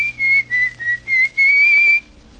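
Someone whistles a short, bright melody in several clear phrases, the pitch gliding slightly between notes, close and fairly loud with a faint low hum underneath.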